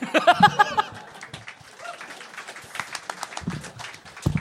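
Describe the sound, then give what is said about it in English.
An audience at a live show claps steadily for several seconds, a dense crackling patter that stays fairly even, with a burst of laughter and cheering mixed in at the start. “Clapping makes this longer.”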